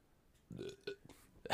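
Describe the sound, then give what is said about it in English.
A few short, throaty beer burps in quick succession, ending in a brief louder, breathy burst. No speech. “But I'm paying for it with beer burps.”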